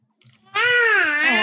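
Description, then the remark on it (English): A newborn baby boy, just awake from a long nap, bursts into a loud cry after a moment of near silence, holding one sustained, shrill wail whose pitch slowly sags before rising again. “Oh, he's devastated. Is he just hungry? He just had one of those freaky newborn naps where they're like asleep for 5 hours.”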